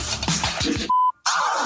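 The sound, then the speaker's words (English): A single steady, mid-pitched beep tone lasting about a quarter second cuts in after dense, scratchy music in a heavily sampled recording, marking where the music drops out, followed by a brief silence before a hissy, noisy sound returns. “There's going to be a beep, like a tone, and then the music drops out and we just hear the voice.”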